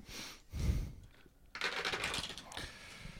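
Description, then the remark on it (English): Dice rattle briefly, a soft thump follows, then they clatter and tumble across a hard surface in a burst of quick, bright clicks that fade out, landing on a three. “Now I will roll the dice.”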